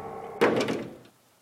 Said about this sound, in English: Eventually, the captor flowed back through the doorway, the hinges whining as the door closed.